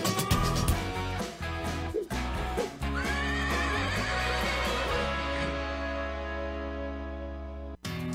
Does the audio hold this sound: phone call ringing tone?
no